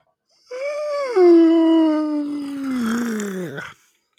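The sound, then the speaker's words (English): A dog lets out a loud, drawn-out yawning whine that slides downward in pitch, lasting about three seconds and ending abruptly, with no other sounds. “I think that was God yawning.”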